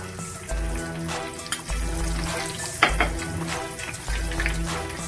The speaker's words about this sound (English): Now I'm shallow frying, I'm not deep frying, of course. And we're just gonna let this cook to whatever doneness that you like.